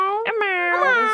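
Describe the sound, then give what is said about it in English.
A person imitates the meow of a rescued cat named Imau with one drawn-out, high, wavering cry, clearly voiced and steady in loudness, rising slightly toward the end, with no other sounds around it. “And in the dreams that she's having, she like knows that her cat Imau was the cat's name because that's the sound it would make when it would meow.”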